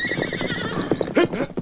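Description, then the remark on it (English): An agitated half-breed horse named Imp whinnies loudly as it tries to get away, its hooves clopping and scuffing restlessly underneath in a quick, uneven rhythm. “The horse isn't trying to kill him. He's trying to get away.”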